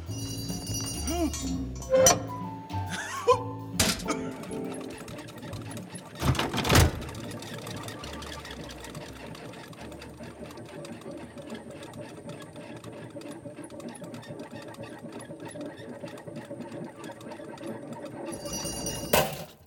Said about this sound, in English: Good. The elevator has arrived. The door isn't open.